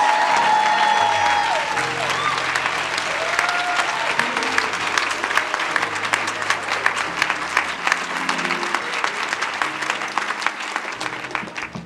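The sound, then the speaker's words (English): A crowd claps steadily for about twelve seconds for graduates, a dense crackling wash of many hands, with scattered cheers and voices woven through the sustained applause. “Let's give our graduates one big round of applause.”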